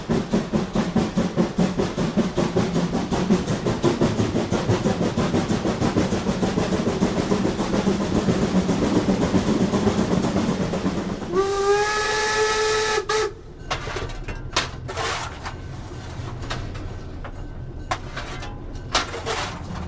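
A steam locomotive on a railway in Germany, recorded on the train, chuffs in a fast, steady rhythm. Then a loud steam whistle sounds for about two seconds with a bright tonal wail, followed by hissing steam bursts and continued rumbling.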